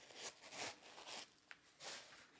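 Soft, crinkly paper rustling in a few brief bursts, fairly quiet, with a small tap partway through, from paper inside a newly opened shoe box for an Adizero Takumi Sen 10 shoe, U.S. men's size 9. No voices.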